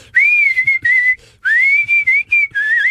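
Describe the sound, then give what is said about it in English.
A person whistles in two loud breathy phrases, the pitch wavering and sliding unsteadily without a clear melody, imitating a woman's tuneless, off-key whistling, with a brief pause between phrases. “And she doesn't know she's doing it, but she can't whistle.”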